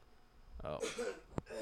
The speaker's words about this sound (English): Oh. And the cough factory's back. Get up! The cough factory.